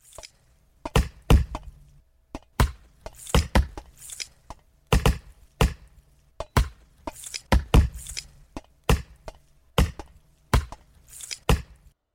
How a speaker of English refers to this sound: Unbelievable. Wow. They were really chopping that wood.